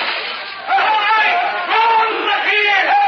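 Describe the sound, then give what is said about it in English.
A crowd of townspeople gathered out front, shouting and yelling together for the hatchet killer in a continuous, loud, agitated roar, with individual cries rising and falling over the dense clamor. “Most everybody in town's out front. They're yelling for the hatchet killer.”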